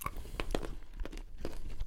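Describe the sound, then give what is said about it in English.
Loud crunching of a hard banana Runts candy being bitten and chewed in the mouth, with several sharp crackling bursts in an irregular rhythm and no talking. “Just crunch it. Crunch it loudly and proud.”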